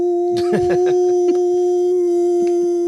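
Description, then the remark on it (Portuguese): A person imitates a woman's howl, holding one long, steady, high-pitched wail for about three seconds. It sounds loud, with a few breathy vocal bursts near the start. “E ela uivava.”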